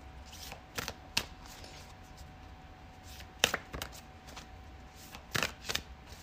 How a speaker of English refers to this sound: It's almost impossible. Nothing's impossible, but it's almost fucking impossible to shuffle these big ass cards with my tiny little hands.